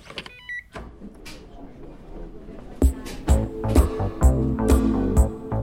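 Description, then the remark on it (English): A few short electronic beeps, then the heavy door to the Douglas Bell Canada Brain Bank at the Douglas Research Center opening, with a run of loud mechanical clunks and a steady low whirring over several seconds. “Dr. Turecki can lead us through the pavilion to a heavy door.”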